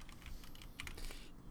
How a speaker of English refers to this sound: You like how loud my keyboard is there? I do like it. Is that are those Cherry MX switches?